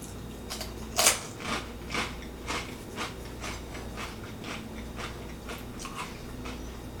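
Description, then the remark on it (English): Crunching of mild guacamole jalapeno Takis tortilla chips: one sharp loud bite, then a steady run of crisp chewing crunches about twice a second, gradually softer, with no talking. “Yeah, I mean you get that corn, the crunch, the guacamole, the jalapeno, And then maybe a little bit of that familiar Takis flavor and heat.”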